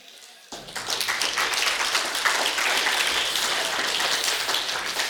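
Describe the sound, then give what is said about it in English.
A woman's steady, rapid hand clapping begins abruptly after a brief silence and continues loudly and evenly for several seconds, a dense crackle of claps with no pauses. “She just clapped.”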